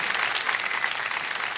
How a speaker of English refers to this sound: Wow, it sounds like a golf clap out there, doesn't it? Yeah. Did somebody just sink a 3-foot putt or something?